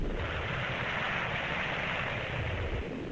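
Sal Hepatica effervescent laxative salts fizz steadily in a glass of water, a dense, crackling hiss of countless tiny bubbles that stays even for a few seconds with no voices.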